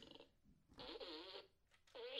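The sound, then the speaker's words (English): Three loud fart noises blown with the mouth, a short one, then a longer wobbling blat, then another, separated by brief pauses with no talking. “You do it three times? Three fart sounds.”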